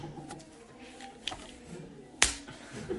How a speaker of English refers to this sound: Okay. Insert face slap emoji.